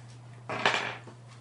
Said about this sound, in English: Dice.